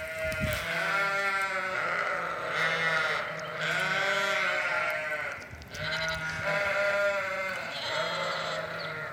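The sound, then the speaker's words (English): A flock of sheep and lambs on a farm bleat almost continuously as they walk down a hill, their wavering baas overlapping in a loud chorus with no pauses and no talking. “the sheep and the lambs at the farm were parading down the hill, making their charming baa sounds.”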